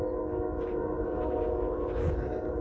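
A train rumbles steadily and loudly in the distance, a continuous low roar layered with droning, humming tones that hold level for the whole stretch without fading.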